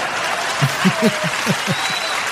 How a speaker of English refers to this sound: So I think that deserves an applause.